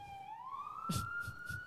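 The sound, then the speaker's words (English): An emergency vehicle siren wails, a steady tone sliding slowly upward in pitch, with a few dull low thumps and street rumble underneath and no one speaking. “let this siren go by.”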